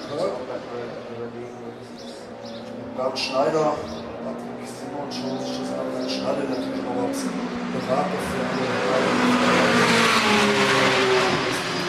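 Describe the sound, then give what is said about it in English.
Sports car engines, an Audi R8 and a Porsche 911 overtaking a Toyota C-HR, rev and climb in pitch as they accelerate through busy Knightsbridge street traffic, the roar swelling louder toward the end amid steady city noise and some background voices. “Toyota CHR being overtaken by an Audi R8 and a Porsche 911.”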